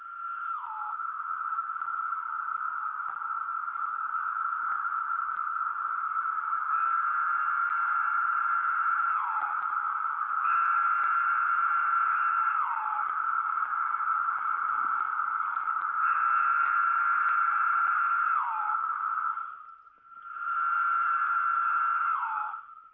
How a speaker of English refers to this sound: I think you found some sound of cicadas, but I've got some right here, and I'm just going to play that and put my phone right up to it, if you don't mind.